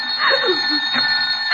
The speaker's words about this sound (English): That's the phone